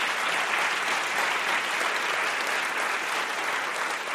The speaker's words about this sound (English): So I just want to invite a round of applause to all of them for the way that they did this.